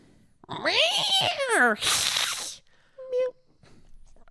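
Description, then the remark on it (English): A voice does a long, wavering meow imitation, loud, followed by a breathy hiss-like burst and a brief high chirp, with quiet room tone after. “When it comes to the rating system of scaredy cats. Meow.”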